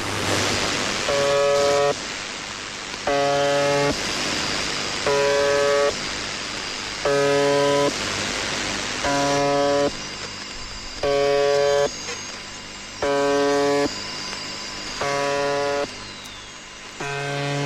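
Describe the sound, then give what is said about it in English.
A harsh, droning buzzer tone from a shortwave numbers station, broadcast on the same frequency since as early as 1976, sounds in short bursts about every two seconds, repeating roughly eight times over a constant bed of radio static and hiss. “Some of these have been broadcast, like, for example, the buzzer has been started in as early as 1976. Let's listen to the buzzer real fast.”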